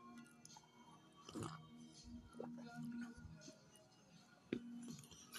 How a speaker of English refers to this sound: Well, what else am I eating? I have these little wafers that I have to chew on when I eat. is called, it's called Vilforo. It's a little brown wafer.